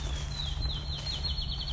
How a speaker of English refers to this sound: So there's some field sparrow. Because we're now entering their territory somewhat. An old growth ravine on one side.